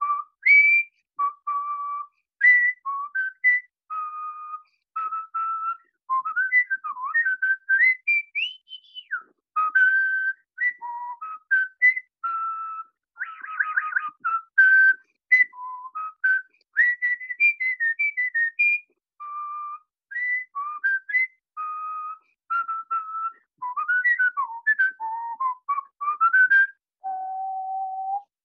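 A person whistles a lively jazz tune solo, clear, with quick melodic runs, bending notes and short pauses between phrases over nearly half a minute.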